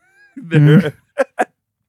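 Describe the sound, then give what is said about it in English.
A voice makes a buzzing, fart-like raspberry lasting about half a second, followed by two short, sharp vocal bursts. “Fart noise.”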